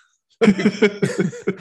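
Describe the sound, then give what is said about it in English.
A voice fakes a cough: a quick run of loud, voiced, throaty bursts, lasting just over a second after brief silence. “The sex scene, cough.”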